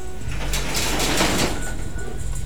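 A new sliding door rolls along its track with a rumbling scrape that swells and fades over about a second, heard on its own with no one talking.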